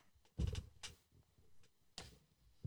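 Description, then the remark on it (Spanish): Two cats fight behind the speaker in a few short, harsh bursts of hissing and thrashing, loudest at the start, with quieter rustles between and a final sharp thump. “Yo tenía dos gatos detrás de mí peleando ahorita.”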